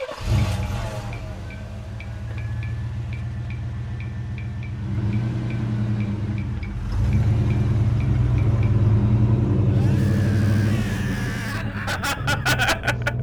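A car door and engine sound effect: a car engine rumbles steadily and loudly for several seconds, rising in intensity partway through, with faint rhythmic ticking, a burst of noise near the end, and a few sharp clicks.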